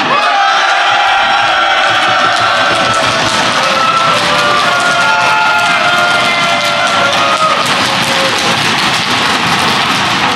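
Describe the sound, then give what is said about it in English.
A large live audience at The Tablet Show in Galway, Ireland, cheers and whoops loudly and continuously, a dense roar of voices and shouts for the full stretch without letting up. “Well, I wouldn't want to meet them in an alley in a crowd in a dark night.”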